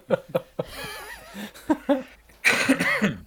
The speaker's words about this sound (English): Oh my God, are you okay? I still got like this COVID like, thing. Cough. Yeah. Yeah, it'll get you, bro. It comes like every once in a while.